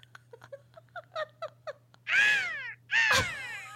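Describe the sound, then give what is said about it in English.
A person imitates a crow, giving two loud, harsh, drawn-out caws after a string of short clicking and clucking sounds, with a steady low hum underneath. “Caw.”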